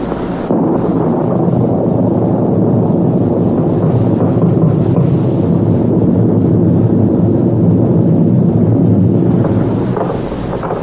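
A loud, steady roar of stormy wind on a January night, gusting and rumbling without a break for the whole stretch, with no voices.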